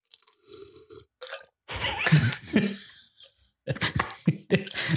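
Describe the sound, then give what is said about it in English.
Loud wet slurping of an El Nino margarita cocktail, in a few noisy bursts that start and stop over several seconds, with no talking. “I'm going to slurp it.”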